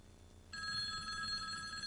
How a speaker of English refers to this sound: get the phone, for Christ's sake.